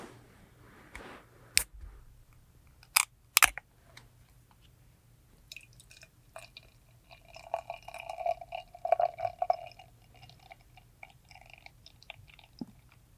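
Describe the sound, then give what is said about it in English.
A few sharp clicks and clinks, then a clear, amber beer is poured into a glass for several seconds, a steady gurgling fill leaving little head, that fades out. No one speaks. “So I've got this poured out. It's very clear. It's a nice solid amber color. Not a lot of head.”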